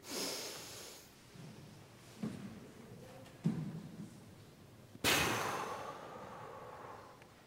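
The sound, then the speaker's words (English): Breathy airflow: a hissing inhale at the start, a quiet held stretch, then a long forceful exhale that fades out. A deep breathing exercise with no talking. “I think we often take for granted how amazing the simple act of breathing is.”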